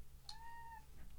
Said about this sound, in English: Boo, if you heard her, for the listeners, that's my cat, Boo.